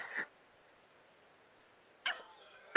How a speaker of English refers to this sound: It happens when I get a cold. And when you start dealing, and I apologize for coughing on you guys, you know it's not my regular norm, but it does happen from time to time.